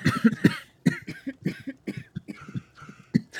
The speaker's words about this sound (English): You wake up the next morning normally, but to the sounds of lots of coughing in the palace room.